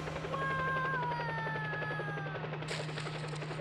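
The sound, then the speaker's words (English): A helicopter's rotor chops steadily and rapidly, loud, over a droning engine hum and a high turbine whine. The sound continues without a break, and no voices are heard. “Did Fang just jump out of the helicopter?”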